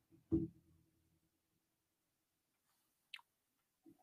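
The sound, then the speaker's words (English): Someone takes a drink of water: a soft low knock with a short ringing tail, then near-silence before a quick falling sip and a small gulp. No talking. “So I had to get some water real quick.”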